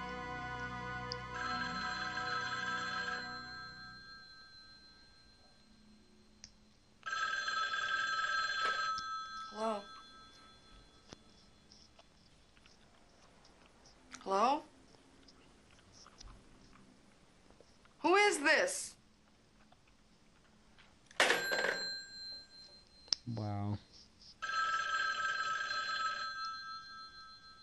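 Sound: telephone bell ringing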